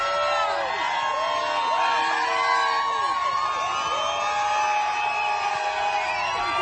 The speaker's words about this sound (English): So you just saw Trump arriving in Detroit with the motorcade, just miles of people lined up cheering him on.